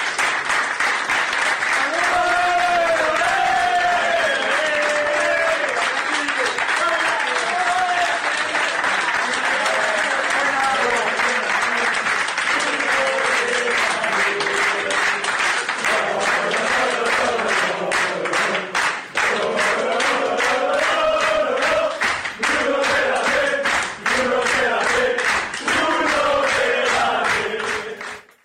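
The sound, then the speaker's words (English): Teammates in a dressing room give a player an ovation on his return from his post-match interview after a 2-2 Matchday 31 draw, bursting into loud, sustained applause with dense rapid clapping while many voices cheer and chant his name for nearly half a minute. “Later, after his interview, when he returned to the dressing room, he was greeted by his teammates giving him an ovation and cheering his name.”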